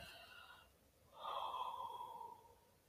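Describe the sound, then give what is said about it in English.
A single drawn-out yawn, fairly loud: a breathy intake followed by a long, voiced exhale that fades over about a second. No speech. “Sorry, I just had to yawn.”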